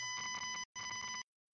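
Two loud electronic beeps, each lasting about half a second with a short gap between, a steady, buzzy, high-pitched tone with no talking.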